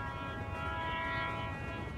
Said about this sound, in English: After a minute, I hear the faint rumble of heavy wheels on invisible tracks and the long, low notes of the train's whistle.